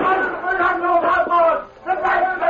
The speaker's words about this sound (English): Dan Reed, teenage nephew of the Lone Ranger, left the general store in Hayville early one morning with supplies and walked toward the hitch rack. Suddenly, he was startled by shouts and gunshots.